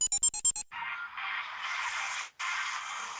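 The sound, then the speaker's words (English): A phone plays an advert: a quick run of about six bright electronic beeps, then a steady, hissy, thin-sounding stretch of tinny audio that cuts out briefly before resuming. No one speaks. “My phone is now playing an advert for something, and I don't understand why it's doing this.”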